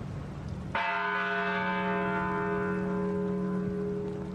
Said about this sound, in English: In many communities, bells tolled 26 times in honor of the children and educators who were gunned down at the Sandy Hook School. That was at 9:30 this morning.